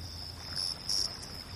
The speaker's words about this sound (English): The Ardèche region, some 900 kilometers away from home, near where the Ardèche River flows into the Rhône. On a small country road, I wandered past Pont Saint-Esprit. The dark greeted me with a loud trill of insect life and smells I didn't recognize.